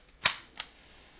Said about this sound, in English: 1960s ultrasonic remote control. Now, those are the remote controls that when you hit the button, that's what why we used to call them clickers